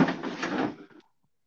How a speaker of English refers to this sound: Oh, no. That was the lid on my box